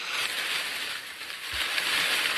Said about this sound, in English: Oh no, here it comes! The bushes begin to rustle.